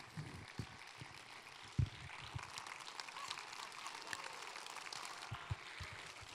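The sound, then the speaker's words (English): An audience claps as the preacher talks about healing, a steady, dense patter of many hands that lasts the whole stretch, fairly soft overall, with a few sharper claps standing out and no one speaking. “Oh, there's always clapping when I talk about healing.”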